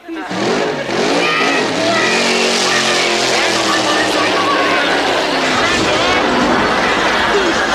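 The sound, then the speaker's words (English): A motorcycle ridden backstage by Gonzo roars in loud, revving steadily upward for several seconds before the rumble breaks into a burst of rough, clattering noise as it crashes. “I'm looking at it and thinking, who rides a motorcycle backstage?”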